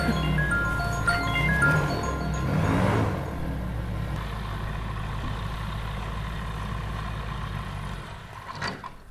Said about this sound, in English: Or that's my noisy plane coming back.